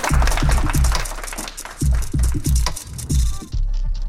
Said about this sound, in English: Round of applause.